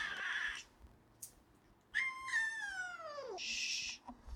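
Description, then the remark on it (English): A distressed cat, Mr. Orange, left alone, lets out a long, wavering howl that slides downward in pitch, loud, bracketed by short harsh hissing bursts before and after; no one speaks. “He howled, hissed at us, and abandoned the shelter he had shared with the others.”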